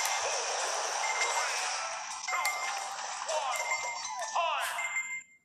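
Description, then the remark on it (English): An electronic timer alarm goes off with shrill, repeating high-pitched tones amid a dense, clattering wash of noise, then cuts out abruptly after about five seconds. “By the way, this is just my timer.”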